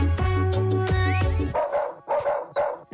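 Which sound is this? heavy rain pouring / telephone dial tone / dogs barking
dogs barking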